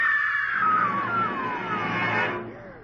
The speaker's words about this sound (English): Did you hear that woman scream? Yes. It came from that parked car.